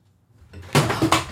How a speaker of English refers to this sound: Oh no, almost knocked over a piece of equipment. Little thing.